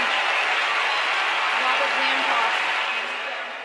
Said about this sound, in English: Now, as the set continues neck and neck, here's that first clip you heard when Davenport hits a backhand winner down the line. And the crowd roars.